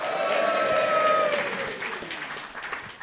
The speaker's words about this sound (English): They tend to introduce themselves, after which, when they say their name, there's huge applause because you're so excited to see us.